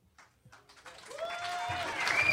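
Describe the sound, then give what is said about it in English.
A crowd breaks into applause for a poet, swelling steadily from scattered claps into a dense, loud roar, with whistles and cheers rising over it toward the end. “Give an applause to, as far as I'm concerned, the most amazing mother in my life, mother of my children.”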